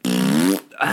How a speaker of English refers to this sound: we go through hours of YouTube clips looking for just the right fart noise to edit into the scream farts